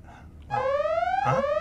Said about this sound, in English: Yes. My alarm. My alarm's going off.